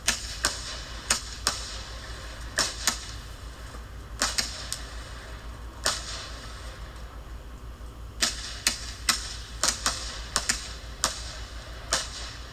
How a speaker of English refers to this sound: So this is fireworks we're watching, by the way.